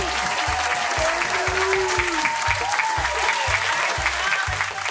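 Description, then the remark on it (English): A live audience at Sandy Care's Comedy Club claps loudly and steadily for the next comedian on National Telejoke Day, the dense applause filling the whole stretch with a few scattered cheers and whoops rising above it, and a steady low thumping beat underneath. “In honor of National Telejoke Day, give it up for our next comedian”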